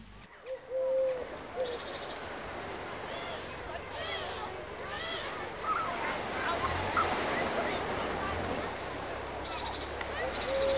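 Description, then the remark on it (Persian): Seashore ambience at sunset on the shore of a port town: a steady, rushing wash of surf fills the background while scattered bird calls ring out across it. A voice speaks over the scene. “مادر گرگو به امید خبری هنوز در ساحل نشسته بود.”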